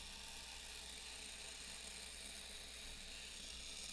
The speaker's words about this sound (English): So it makes a little, like, squeaky sound, and then the little balls roll down this spiral thing, and then that's 5 seconds.